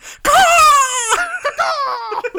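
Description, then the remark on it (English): A voice imitates a bald eagle's screech: a loud, high, strained wail held for about a second, then broken into shorter wavering cries that trail off. “Actually, what if it screeches like a bald eagle?”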